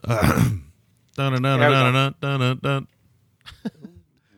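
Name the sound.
throat clearing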